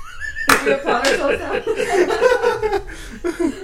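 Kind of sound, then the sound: human body sound, slow clap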